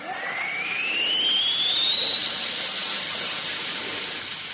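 A steady, loud rush of air hissing out through an airlock valve as the air is let out of the airlock, with a whistling tone that slowly rises in pitch over several seconds. No voices.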